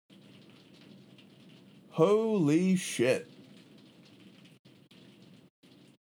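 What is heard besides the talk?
rain falling outside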